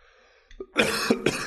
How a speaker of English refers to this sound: Having some coughing issues here today. Okay. I'm choking a little bit here.